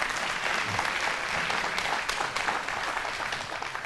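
An audience applauds steadily, many hands clapping in a dense, even wash of claps that holds its loudness for the full few seconds, with no voices standing out.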